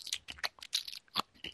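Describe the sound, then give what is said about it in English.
Wet crunching as someone chews food, with several irregular bites and crackly chomps over about a second and a half, no talking. “I don't know what you were chewing, but it sounded terrible.”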